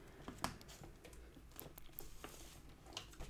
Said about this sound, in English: It's a nice paper sound.